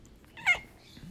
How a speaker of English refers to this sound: My kitty's here. She says hello too.